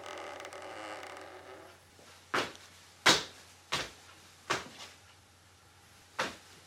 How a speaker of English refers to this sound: It's probably just the house creaking. It's old.